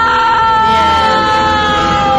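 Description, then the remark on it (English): A loud, sustained scream played as a drop-in sound effect, a single drawn-out, piercing shriek lasting about two seconds, with no talking over it. “Right, and it was just too wide of an opening not to drive a drop in through”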